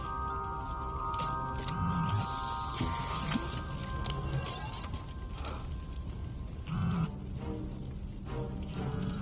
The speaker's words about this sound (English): This is a Bacta spray. It will heal you in a matter of hours.